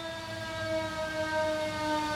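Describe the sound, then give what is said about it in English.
A fire truck siren blares in a sustained, steady wail with bright layered tones as the truck comes by, loud throughout, with no one speaking over it. “We got a big-time fire truck coming by.”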